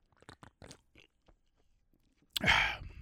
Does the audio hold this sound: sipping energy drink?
yes